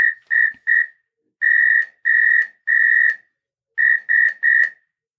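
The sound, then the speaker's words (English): A shrill, steady whistle sounds an SOS pattern in Morse code: three short blasts, three longer blasts, then three short blasts again, all at one high pitch with brief gaps between them. “And then this last one is actually in Morse code, and it's SOS. It's three short, three long, three short.”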